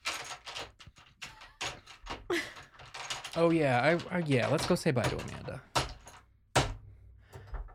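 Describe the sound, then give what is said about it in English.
A woman stands up and pushes in her chair with a loose, clattering rattle, a scatter of quick knocks like dice shaken in a tray, interrupted by people talking and a couple of sharp thuds. “It sounded like a bunch of dice moving around in a tray.”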